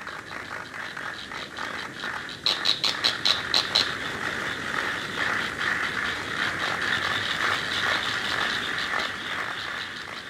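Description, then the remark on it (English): A cricket-like insect stridulates with its wings steadily with a high, buzzing chirr, broken early on by a quick run of sharp, rasping pulses before settling back into a continuous trill. No voices. “Wings also turned out to be excellent sound makers.”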